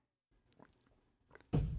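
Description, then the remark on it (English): Someone chews a mouthful of food, with soft, irregular wet clicks and faint crunches, then a sudden loud, rough burst of noise at the end. No one speaks. “Sorry, I had a mouthful.”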